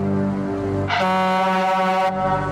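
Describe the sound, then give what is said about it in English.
A loud, blaring air horn blast, a jump-scare sound in a movie, holds steady, then surges even harsher and brighter for about a second before easing back down. The tone is sustained, with no voices. “Yeah, King always has a good air horn in his movies.”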